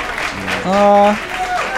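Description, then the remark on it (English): Rapturous applause, a steady wash of clapping across the whole short clip, with a sustained voiced cheer or whoop rising loudly over it in the middle. “Some rapturous applause.”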